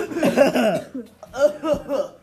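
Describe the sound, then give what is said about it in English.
A voice makes a series of exaggerated, voiced coughing sounds in two rapid clusters separated by a short pause, fairly loud and throaty, like a playful imitation of coughing. “Insert coughing noises here.”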